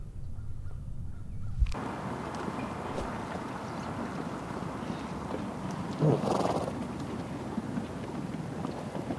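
A donkey brays once, a short harsh call rising briefly above a steady wash of loud outdoor noise that starts abruptly and fills the background throughout.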